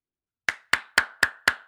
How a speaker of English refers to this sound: Bravo. Dude, you know what? Very well deserving. Let me just keep that clapping. It is about time.